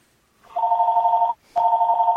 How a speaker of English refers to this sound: Hold on, we have a phone call. Yes, it's mine.